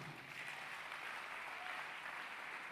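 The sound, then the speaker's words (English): An audience claps together in a dense, steady wash of hands that holds an even loudness throughout, with no clear singing or talking standing out above it. “You're clapping and singing, huh?”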